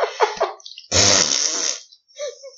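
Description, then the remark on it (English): Someone blows a loud, wet, sputtering raspberry, pretending to diarrhea fart in another person's face, for about a second, with brief vocal noises before it and a faint trailing sound after. “Well, I was pretending to be diarrhea farting in your face.”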